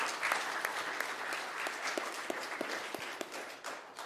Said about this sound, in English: So go ahead and give yourself a round of applause if you will.